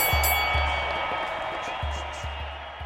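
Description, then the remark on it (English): A large boxing crowd roars and cheers in a dense, continuous wall of noise as Foreman crashes to the floor and Muhammad Ali raises his fists, with occasional deep thumps pulsing underneath, loud and sustained throughout. “The crowd goes wild as Ali raises his fists.”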